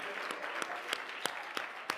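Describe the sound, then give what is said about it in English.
An audience clapping their hands together as they put their Bibles down and get ready to be seated, a dense wash of many claps with a steady beat of sharper unison claps landing about three times per second. No one speaks. “One more time, would you just clap your hands as you put your Bibles down, get ready to be seated.”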